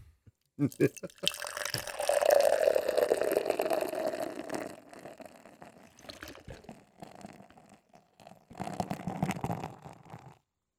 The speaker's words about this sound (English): Aggressive pouring.